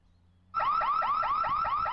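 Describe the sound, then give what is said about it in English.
After a brief quiet moment, a loud electronic alarm abruptly starts blaring, cycling through rapid, rising whoops about four times a second, steady with no voices. “You said the alarm goes off after a few seconds.”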